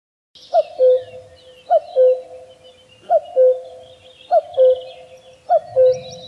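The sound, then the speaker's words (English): A common cuckoo, a bird found in Europe and Asia, calls its two-note, falling cuckoo five times in a steady rhythm, clear, with faint twittering from other birds in the background. “this is the common cuckoo”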